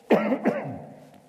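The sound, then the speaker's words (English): A man coughs twice in quick succession, fairly loud, each cough a short harsh burst tailing off into a rough throaty rasp. “For some reason I got a little cough this morning.”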